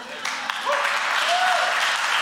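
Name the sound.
audience applause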